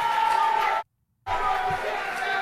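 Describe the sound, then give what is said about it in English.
An unhappy crowd at a town hall event raises a loud, continuous din of many overlapping voices, broken by a sudden gap of near-silence lasting under half a second before the clamor resumes. “Crowd not happy.”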